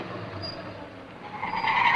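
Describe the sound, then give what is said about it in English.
A heavy, low rumble like a large truck passing by, building in loudness toward the end with a rising mechanical whine over the steady roar. No one speaks. “Well, unless I'm crazy, that truck just drove into the basement.”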